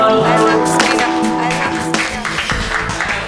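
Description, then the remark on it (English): An audience at a comedy show claps steadily for a comedian in a dense burst of applause, with whoops and cheering voices rising over the patter of hands. “Everybody clap your hands, ones and twos”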